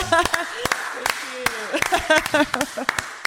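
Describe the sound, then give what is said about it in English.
Sharp hand claps land in an uneven, scattered rhythm, roughly a dozen across a few seconds, each crisp and loud, interleaved with people talking and laughing over them. “Let me clap.”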